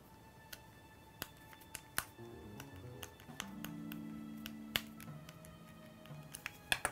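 Plastic clicks and taps as batteries are loaded into a battery pack, an irregular series of sharp snaps ending with the battery pack door clicked shut, over a faint low hum.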